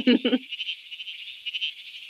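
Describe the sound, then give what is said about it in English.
A bleating froglet, a tiny frog, gives a couple of quick, nasal sheep-like bleats, then a steady buzzy, insect-like pulsing trill that carries on with no voices. “It's the bleating froglet. This is a tiny little frog, and it calls and sounds a lot like a sheep.”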